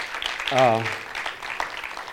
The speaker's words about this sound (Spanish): Te lo pedimos en el nombre de Jesús. Amén. Muy bien, le damos un aplauso. Genial.